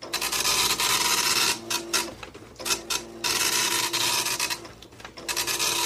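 An old dot matrix printer runs in steady, raspy mechanical bursts, a loud scratchy grinding broken by a few brief pauses before starting up again. No one speaks.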